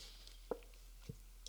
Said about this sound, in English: I have to get a little sip of coffee here.